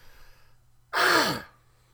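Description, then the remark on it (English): A single throat clearing, a harsh, breathy burst about half a second long with a slight downward slide in pitch, standing alone against a faint low hum. “As I clear my throat.”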